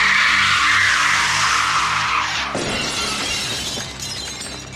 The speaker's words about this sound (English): The creature's sonic scream explodes a row of windows.